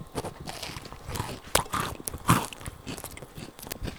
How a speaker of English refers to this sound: You hear that crunch? Yeah. That's a donut. No, it's not a donut because I baked it.